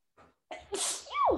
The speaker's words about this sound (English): I think I'm going to sneeze again.